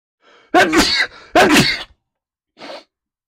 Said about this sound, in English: I'm so sorry. I just sneezed. It was so bad. It was terrible.